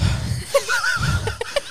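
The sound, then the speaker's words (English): A voice imitates the heavy, labored breathing of a pregnant woman walking down the street: a few rough, breathy huffs with a short voiced, wheezy exhale in the middle, fairly loud, lasting under two seconds. “You're just like, why are you breathing so hard?”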